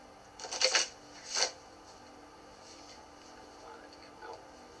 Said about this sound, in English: I love when a new deck shuffles.